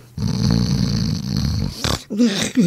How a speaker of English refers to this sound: Her one big flaws are snoring.